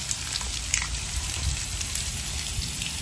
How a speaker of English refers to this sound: Okay, so what we have here, you can see the water hose that has busted a hole in it, and the water is just flowing out.